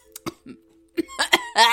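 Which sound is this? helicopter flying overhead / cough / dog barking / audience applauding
cough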